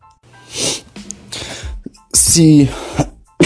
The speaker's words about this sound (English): Sorry, I just had to pause for a bit and get a large amount of the coughs out.